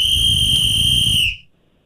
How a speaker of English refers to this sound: What? Is that a whistle? You're damn right that's a whistle.